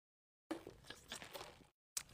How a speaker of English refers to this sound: Let's take a sip. Hold on.